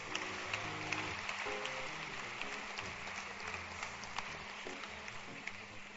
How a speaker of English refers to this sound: Clap for the pastors.